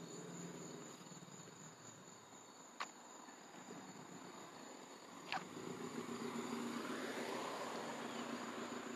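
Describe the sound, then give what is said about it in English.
Crickets chirp outdoors in Drexel Hill in a steady, high-pitched drone that runs unbroken throughout. Two sharp clicks cut through, and a soft rumble builds toward the end. No one speaks. “I'm outside too, so you might hear cars and stuff like that and crickets.”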